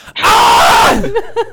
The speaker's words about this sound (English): A guttural scream, by the way. Man, Ugh. I thought that was. Like, I almost thought that was a sound effect. That was not a sound effect.